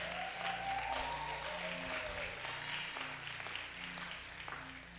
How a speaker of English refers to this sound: Y'all clap for my team back there. They work every week to make sure things are dope for us. Oh, you can do better than that.